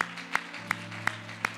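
A church audience at an evening service claps hands together unto the Lord in a steady, even rhythm, five crisp beats about a third of a second apart, over a soft sustained low musical drone. No one speaks.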